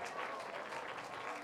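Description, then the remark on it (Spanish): An audience breaks into steady, dense applause in praise of the Lord, many hands clapping together at an even loudness throughout the short stretch, with no voices standing out. “¿Cuánto da un aplauso de alabanza al Señor?”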